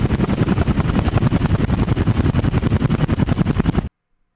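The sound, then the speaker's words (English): Rotors of three approaching helicopters thump in a fast, steady chopping rhythm, loud, with an engine roar underneath. No voices are heard, and the sound cuts off abruptly near the end. “I was just back above the trees when I saw the disaster looming, and heard that characteristic sound.”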